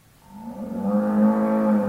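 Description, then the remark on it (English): A cow at a working dairy on Kibbutz Zikim lets out a long, low moo that swells in loudness and holds steady, clear, with faint background noise and no talking. “During such visits, he beamed with pride as he viewed the cows calmly chewing their cuds or lined up at milking machines,”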